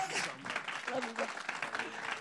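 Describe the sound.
A church crowd breaks into sustained applause welcoming a guest pastor to the pulpit to preach, a dense, steady patter of many hands clapping, with scattered voices faintly audible underneath.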